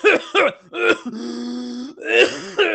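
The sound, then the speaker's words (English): A person imitates a hard coughing fit from inhaling weed: rough, harsh coughing bursts, broken by a long strained wheezing groan, then more raspy hacking at the end. “I'm not tolerant with weed, so I immediately started coughing very hard until it was like this.”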